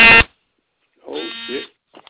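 A harsh electronic door buzzer sounds twice: a short, loud burst, then after a pause a longer, wavering buzz lasting over half a second, followed by a faint trailing blip.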